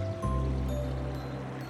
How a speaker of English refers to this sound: Your raft begins to turn a corner and you hear the sleepy bellow of a waterfall. And then you see it.